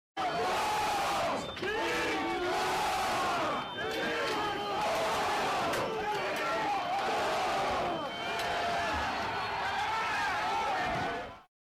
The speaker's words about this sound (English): I'll show you this clip of a crowd of Trump supporters trying to trample the police in front of the Capitol.